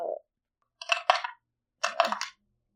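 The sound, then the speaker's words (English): Dice clatter and tumble across a hard surface in two quick bursts of bright, rattling clicks, each lasting about half a second, after a brief low thump at the start. The roll comes up a six. “Dice have been rolled.”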